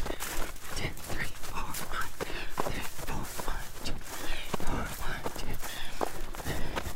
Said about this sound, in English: You're just hearing your footsteps, and that's it.